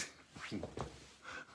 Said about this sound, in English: I heard Dexter the dog, right?